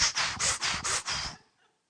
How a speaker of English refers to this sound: Keep breathing in and breathing out.